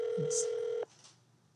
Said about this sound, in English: I'm ringing.